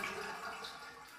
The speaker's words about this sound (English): Now do you think you can turn off the shower? I'm freezing.